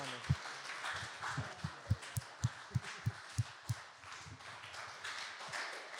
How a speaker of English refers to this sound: Could we just have a large round of applause for our three